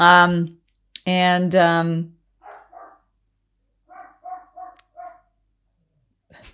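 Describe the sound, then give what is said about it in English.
A dog barks loudly, a couple of harsh barks, followed by several quieter, shorter yips spaced out. “My dog's losing it.”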